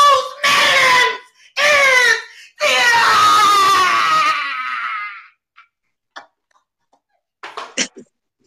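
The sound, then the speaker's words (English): A woman lets out three loud, strained screams in quick succession during a screaming competition, the last one long and wavering before trailing off, followed by a few faint clicks and small noises in the quiet. “You ain't never touched your throat before you scream.”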